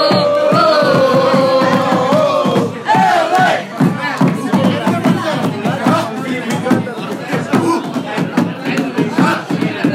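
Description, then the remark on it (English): A large crowd of sports fans cheers and chants together after their team lost the game, jumping around and singing, loud and continuous, with rhythmic sung shouts and bursts of voices rising over a dense roar of many people. “They lost the game, but they're jumping around and singing.”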